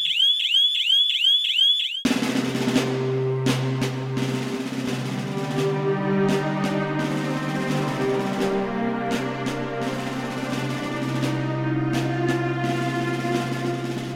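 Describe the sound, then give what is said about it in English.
An alarm goes off at 3:30 in the morning, starting with a fast, repeating electronic warble, then giving way to a loud, steady blaring drone with scattered clanks. No one speaks. “I'll suspend alarm and tell everyone to hit the briefing room.”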